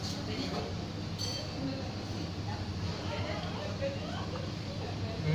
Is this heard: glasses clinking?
yes